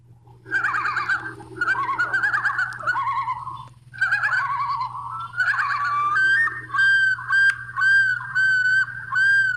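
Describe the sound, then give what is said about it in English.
Common loons on Lower South Long Lake in Crow Wing County, Minnesota, call out with rapid, warbling tremolos for several seconds, then shift into long, rising and falling wails, loud and clear over a steady low hum, with no talking. “Every sound that a loon makes, like, all at once.”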